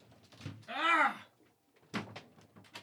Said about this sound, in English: doors are opening now. See, this is my plight.